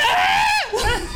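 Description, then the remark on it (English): A person lets out a loud, high-pitched scream that holds steady, then drops sharply in pitch before a shorter strained cry follows, all within about a second. “I would like to scream.”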